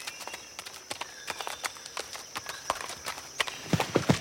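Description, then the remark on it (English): Horse hooves clip-clop in an irregular, stumbling rhythm, with many overlapping knocks from more than one animal, growing louder and denser toward the end, as the horses slip on a steep, uneven, muddy mountain trail. “Really steep in here and uneven. Horses are slipping all over the place.”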